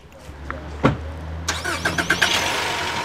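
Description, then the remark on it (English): An unmarked police car's engine starts up in a police department parking lot: a low idle hum, a sharp thump, then the motor catches and revs with rising, pulsing surges before settling into a steady run. “The trio piles into an unmarked police car.”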